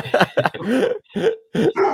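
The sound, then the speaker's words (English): A dog barks repeatedly and loudly at a dog it sees outside, a rapid string of about six sharp barks with one longer, drawn-out yowl in the middle and no talking. “There's my boy. Hey, he sees a dog outside.”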